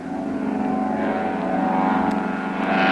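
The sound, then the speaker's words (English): A propeller seaplane's engine drones loudly and steadily as it takes off from water, its buzzing harmonics swelling slightly as it builds power, continuous with no voices present. “There he goes. He's off the water. Heading straight for the trees on the other side there.”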